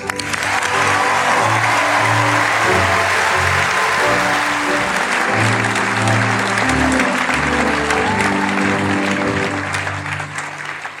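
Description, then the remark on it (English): A large crowd of students gives a standing ovation after a speech, applauding loudly and steadily, a dense wash of clapping that holds for about eleven seconds, with faint cheers and murmuring voices mixed underneath before it begins to ease off. “If those kids are going to give you a standing you're so sweet.”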